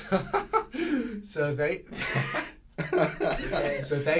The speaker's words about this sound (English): Oh, that's my karma. I had to cough.